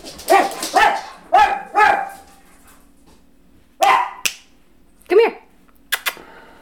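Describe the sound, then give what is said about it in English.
Dogs bark in short, loud bursts, four quick barks followed by a pause and a few more scattered yaps and sharp clicks. “Do these fucking dogs. No reason. No. No reason. Let's just bark.”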